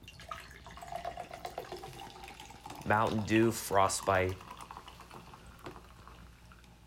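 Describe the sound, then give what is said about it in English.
Cold, dark blue fizzy soda from the refrigerator pours steadily into a cup, a continuous bubbling, splashing hiss that runs the whole time, with a man speaking briefly partway through. “We're going to pour this in.”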